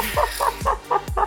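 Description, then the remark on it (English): A chicken squawks in a quick series of about five harsh, repeated calls, fairly loud, with no talking over them. “I was gonna say something about the chicken dying, but that's.”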